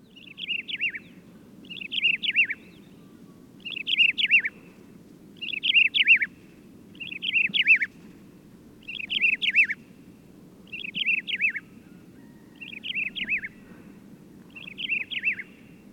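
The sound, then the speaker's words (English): A desert lark (Ammomanes deserti) repeats a short, bright call about every two seconds, nine times in a steady rhythm, clear over a low, constant background rumble. “That includes, of course, the desert lark, Amamanes deserti.”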